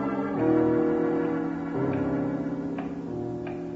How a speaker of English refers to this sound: Strikes like that 5 minutes before the hour, before the biggest bell rings. The tower clock? Yes, I've heard them like that.